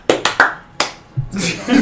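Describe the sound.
A brief, sparse burst of applause called for as a round of applause for a man: four sharp, loud hand claps at an uneven pace, three quick ones and then a pause before the last, followed by people starting to talk.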